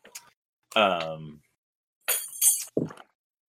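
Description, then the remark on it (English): Ice clatters and clinks against a glass of ice water in a couple of short, bright bursts, with a brief voiced sound before them as someone chugs the ice water from the glass. “I'm chugging the ice water.”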